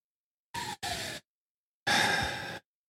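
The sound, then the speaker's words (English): A child yells at someone's home in three bursts: two short cries in quick succession, then a pause and one longer, harsher shout. The yells are strained and breathy, and no one is talking over them. “Is that yelling at your place?”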